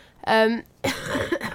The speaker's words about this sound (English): I'm so sorry, guys. This cough will be happening throughout my hours today, as it has not left me.